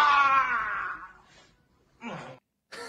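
A man lets out a loud, drawn-out yell during a massage that sinks in pitch and fades, followed by a pause and two shorter, strained vocal bursts.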